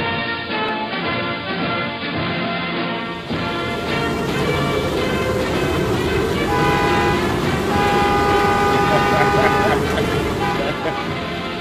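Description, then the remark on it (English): Car horns honk in long, sustained blasts, steady tones that overlap and swell toward the end, over a constant rushing wash of wind and traffic noise with faint voices mixed in. “Windy out here. Hey, it's getting noisy over there. Why, yo, windy and the horns are honk if you like me.”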